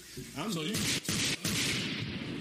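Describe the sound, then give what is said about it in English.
Three loud gunshot blasts in Houston, each followed by a short dip, come right after a brief voice. The shots are harsh and noisy and run into one another. “I just shot the gun 3 times.”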